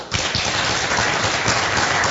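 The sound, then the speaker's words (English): A crowd bursts into applause, a dense, steady wash of many hands clapping at once, loud and sustained throughout with no voices standing out. “Who in the audience is going to applaud again?”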